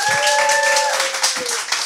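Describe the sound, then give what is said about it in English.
Dense, steady audience applause welcoming a show's guest for the evening, many hands clapping loudly for two seconds, with a sustained high whoop riding over the first half. “For right now, let's please give a warm round of applause to our guest for the evening,”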